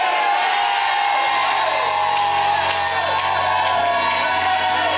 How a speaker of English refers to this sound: So if you are shouting amen for things to be, if I were you, I would say it properly. Amen.